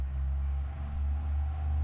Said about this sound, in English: Sorry about that. There's a giant truck driving by.